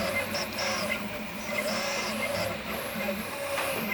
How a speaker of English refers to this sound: About 24 3D printers are whirring away, making prototypes for filtered masks that can keep the coronavirus out of the mouths and noses of medical workers.